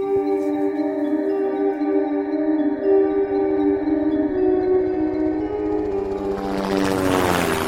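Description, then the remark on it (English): A Jet Ranger helicopter in flight drones steadily with a rhythmic rotor chop and a humming turbine whine, loud, its engine noise swelling into a rushing roar near the end. “We travelled in a Jet Ranger helicopter, which ironically landed on Powell's.”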